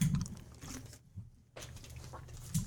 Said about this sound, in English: My fault, I'm drinking water. Stay hydrated, H2O. He thirsty as shit, yeah.